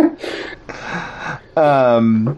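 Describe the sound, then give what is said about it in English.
Heavy, labored breathing from someone who has just carried a bunch of boxes: two loud, rushing breaths followed by a voiced, groaning exhale, like someone winded and catching their breath. “I just carry a bunch of boxes. No, I know. you're breathing very heavily.”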